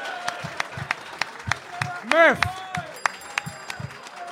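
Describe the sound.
A live audience claps in sharp, scattered bursts, with a single voice calling out loudly in the middle as the applause carries on around it.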